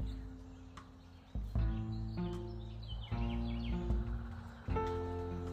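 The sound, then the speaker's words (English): A woodpecker taps in slow, separate knocks about a second apart, sharp, early in the morning at a house in the Midwest, over a steady low outdoor hum with faint birdsong in the background. “Here he is. Woody the woodpecker.”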